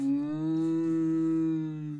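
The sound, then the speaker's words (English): A person imitates a cow's moo with one long, steady, low-pitched note lasting about two seconds, loud, with no other talking. “I'll make a cow noise.”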